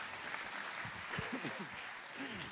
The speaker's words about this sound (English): You can clap. I'll wait. Thank you.